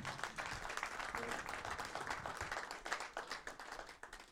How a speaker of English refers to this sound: Let's clap for you.